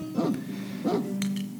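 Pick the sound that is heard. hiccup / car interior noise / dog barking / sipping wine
dog barking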